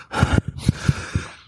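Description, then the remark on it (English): A person imitates heavy panting from running in armor: about six quick, breathy huffs in an uneven rhythm, fairly loud, with no words spoken. “I'm going to look at her, and I'm, like, panting.”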